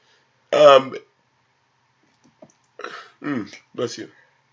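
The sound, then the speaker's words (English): A single sharp, loud sneeze bursts out, then after a short quiet pause come a few brief muffled vocal sounds and a little soft talking. “Bless you.”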